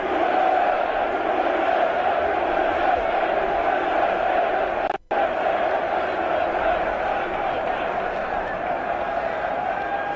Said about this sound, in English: The entire crowd chanting USA as the president walks on the field. All military members in the stands, members of our nation's army, members of our nation's navy, commanders, generals, all the people involved there for that game.